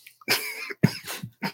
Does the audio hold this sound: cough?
yes